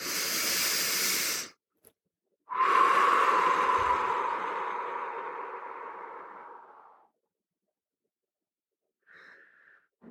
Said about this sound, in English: So I want you to put your hand on your heart. Take a breath. And allow your exhale to be longer than your inhale. Let's do it again.